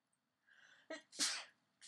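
A single close, forceful sneeze, preceded by a short sharp intake of breath, with an explosive burst that fades quickly.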